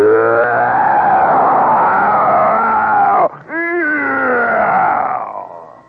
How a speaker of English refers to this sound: And for 10 minutes, he roared around the track, and we stood and watched with our eyes as big as tennis balls.